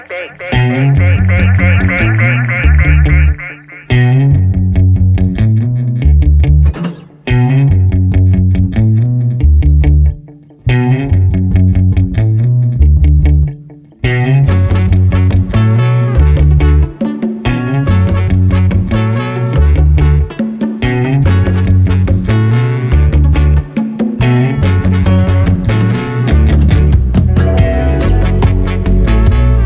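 An electronic music track with a steady, driving beat and thick layered synths, loud throughout, with brief drops in the opening seconds before the full arrangement kicks in with bright, busy high-end textures.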